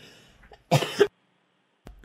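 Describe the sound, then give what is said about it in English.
A single throaty cough with a harsh two-part burst, standing alone against near silence, followed by a brief faint thump near the end. “I coughed.”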